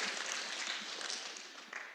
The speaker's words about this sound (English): Let's give a clap to the Lord. Amen.